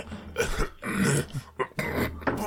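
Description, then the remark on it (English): A voice imitates the wet, phlegmy cough of a coworker who is a severe smoker: a run of several harsh, throaty hacks in uneven bursts, gravelly and rattling, fairly loud with short gaps between them. “However, I hear this smoker's cough where it's just like...”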